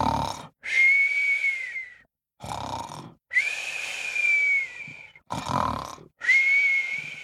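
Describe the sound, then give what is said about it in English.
A voice imitates a sleeping griffin snoring and whistling: three rounds of a rough, rumbling snore, each followed by a long, steady high whistle, loud with no talking. “The griffin fell asleep straightaway and started to snore and whistle.”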